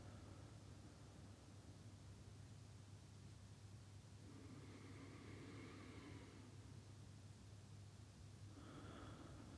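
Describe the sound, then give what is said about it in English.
Slow, deep breaths, a long inhale through the nose followed by an exhale through the mouth, faint against a steady background hiss, with no talking. “And just for the first minute or so, we're just going to take in some deep breaths. Just breathe in through the nose and out through the mouth.”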